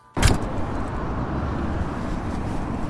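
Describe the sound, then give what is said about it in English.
Night traffic under the Shibuya Metro Station, recorded on 16 January 2015: a loud thump opens onto a steady, dense roar of traffic that continues unbroken, with deep rumbling, echoing vehicle noise. “Night traffic under the Shibuya Metro Station, the 16th of January 2015.”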